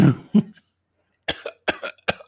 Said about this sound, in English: Yeah, she's just over there, just tuberculosis coughing.